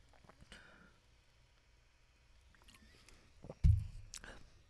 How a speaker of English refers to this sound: Just take a drink of the well water.